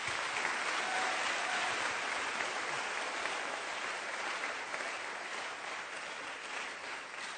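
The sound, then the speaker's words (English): An audience claps for the Lord together in a dense, steady wash of applause that holds for several seconds and eases slightly toward the end, with no voices standing out. “Give the Lord a wonderful clap of him.”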